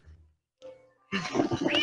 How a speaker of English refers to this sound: Now listen, the cat. That darn cat. He's in distress.